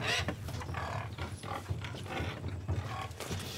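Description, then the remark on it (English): A warthog grunts and snorts in a rapid, rough series of low pulses, fairly loud, with no one speaking. “I like the B-roll of the warthog.”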